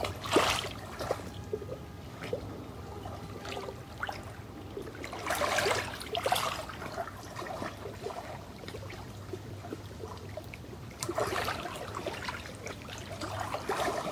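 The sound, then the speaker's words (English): Water flows and trickles steadily throughout, with a few louder splashing surges now and then over a soft, continuous gurgle. No voices are heard. “Feel the water calling to us, asking for us to relax.”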